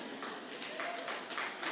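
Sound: audience clapping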